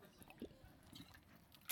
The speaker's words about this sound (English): I'm going to sip from my really loud water bottle again.